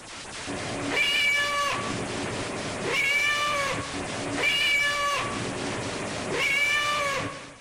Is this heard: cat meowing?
yes